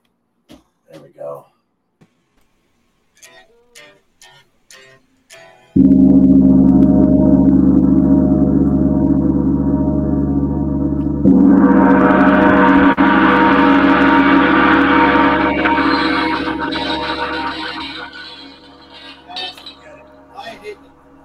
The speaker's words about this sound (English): This sounds like a good time to actually, hit the gong for people that want to hear it. So I think I'm going to do that.